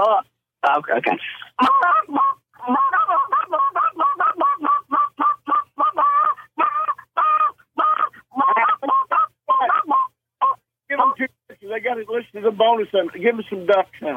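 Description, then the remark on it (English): A person imitates goose calls with their natural voice, a long rapid run of short, nasal honks that stays loud, with a slightly tinny, band-limited sound. “give us some duck sounds real quick, and give us some goose sounds, which are natural voice.”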